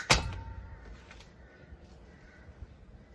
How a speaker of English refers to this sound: Quiet, Mr. Crow. Go away.